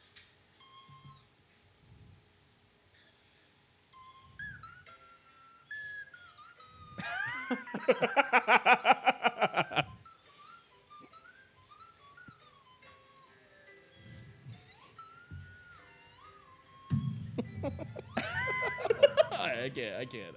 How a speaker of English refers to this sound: So he's going to play some classical music on the slide whistle.